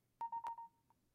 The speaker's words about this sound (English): I just airdropped something to myself. That was weird. Airdrop.